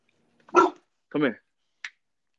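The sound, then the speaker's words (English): Two loud dog barks about half a second apart, followed by a short sharp click, with silence between them. “Somebody, dog, in the ground just barking.”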